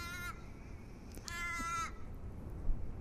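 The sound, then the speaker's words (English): A crow caws twice in the morning while flying overhead and out over the ocean, a short call followed by a longer, drawn-out harsh one, standing out clearly over quiet outdoor background noise with no talking. “And that crow, he's flying overhead.”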